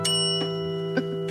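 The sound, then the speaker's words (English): A desk bell is struck four times in an uneven rhythm to play a tune, each bright ding ringing on with a sustained metallic tone that overlaps the next, with no voices. “I haven't picked up a guitar in a couple of years, but I'll play it on the desk bell”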